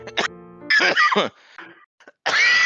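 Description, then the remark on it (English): Several harsh, raspy coughs: a short hack, then a longer rough fit, and after a brief quiet another loud cough at the end. “But I do hate when you keep our coughs in the podcast.”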